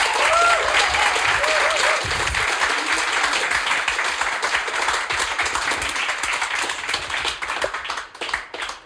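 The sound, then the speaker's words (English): Sustained, dense applause from a crowd, many hands clapping in a steady roar with a few faint cheers early on, tapering slightly at the very end. “A big round of applause.”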